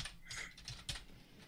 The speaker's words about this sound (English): Oh, look, my typing is absolutely atrocious.